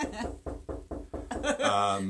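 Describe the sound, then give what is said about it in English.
A quick series of about five knocks on a door, evenly spaced, with people talking over and after them. “there is a knock on the door”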